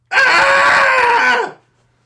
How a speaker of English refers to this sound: Let's do a cathartic scream, everybody. Join in with us if you can find a safe place to do so. And yeah, here we go. We'll give you a three count in 3, 2, 1.